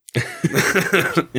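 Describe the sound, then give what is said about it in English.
A voice actor imitates the harsh, raspy cough of a sick dragon, several gravelly hacking bursts in quick succession lasting about a second, fairly loud with no other sounds. “No, he's, but he is sick. He's got this mean cough, and it looks like he's not long for this world.”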